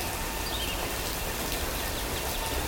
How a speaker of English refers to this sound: When you touch me, goosebumps rise from my frozen flesh, and each hair stands with anticipation while we writhe in summer rain.